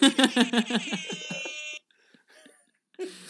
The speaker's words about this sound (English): Wait, what was that first one? It was just that. The first one sounded like an old-timey, like, very polite car horn. I was like, hit us with the horn. It was literally like, beep, beep.